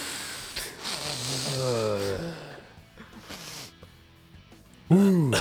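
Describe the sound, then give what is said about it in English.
Voices imitate loud, drawn-out snorts of lines of cocaine at a truck, a few raspy sniffs in a row mixed with breathy groans, ending in a sudden loud vocal exclamation. “… cuts some lines up, and they all sniff lines.”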